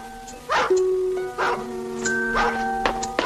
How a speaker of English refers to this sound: That dog. That collie dog. He's a bad dog.